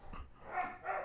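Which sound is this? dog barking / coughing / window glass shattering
dog barking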